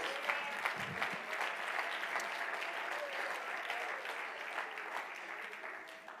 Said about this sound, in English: Oh, clap your hands and praise Him.